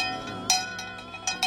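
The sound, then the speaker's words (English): A bell is rung to ring in Christmas, with several sharp metallic strikes, irregularly spaced, each leaving bright, sustained overtones that overlap and linger between hits. No voices are heard. “Ring the bell.”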